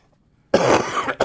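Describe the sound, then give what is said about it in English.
A single loud, wet, phlegmy cough from a sick person bursts out close to the microphone after a moment of silence, harsh and raspy, with a brief second rasp at the very end. “You turned down my microphone, and then you had a big tubercular phlegmy cough in your own microphone.”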